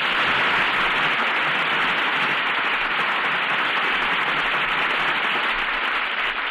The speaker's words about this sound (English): And here they are to receive our applause for three fine performances. Joan Evans, Robert Wagner, and Terry Moore.